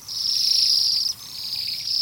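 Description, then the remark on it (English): A flock of Bohemian waxwings in winter gives high, thin, buzzy trills that overlap into a steady shimmering chorus, dipping briefly midway before swelling again, with no one speaking. “Bohemian Waxwings – Exquisite Winter Visitors”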